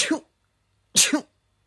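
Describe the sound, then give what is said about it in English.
Two quick sneezes about a second apart, each a sharp, breathy burst with a short voiced tail, fairly loud, with silence between them. “One more. Bless you.”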